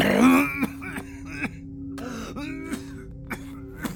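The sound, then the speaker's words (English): A man's rough, guttural growl, followed by a string of short, scattered coughs and throat-clearing bursts spaced over a few seconds, with no speech. “growled and coughed, then started over.”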